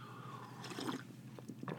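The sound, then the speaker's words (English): A quiet sip of coffee, with soft slurping and wet mouth sounds in two short bursts and a faint swallow, no talking. “I'll take a sip of coffee.”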